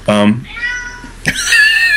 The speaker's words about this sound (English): I think a cat just died. Sorry, one's about to. There's about to be recording equipment from my office thrown at this cat.